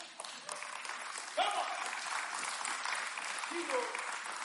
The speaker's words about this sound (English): Lads ready to applaud. Go for it, man.